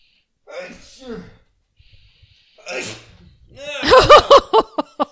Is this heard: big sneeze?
yes